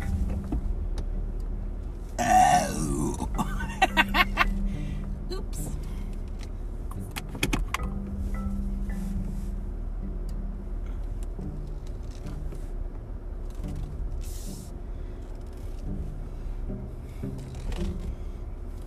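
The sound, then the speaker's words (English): A car engine hums low and steady as the vehicle creeps slowly into a parking spot, much too close to another car, with scattered clicks and a brief rustling burst early on; a voice utters a couple of short exclamations. “Way too close to this car.”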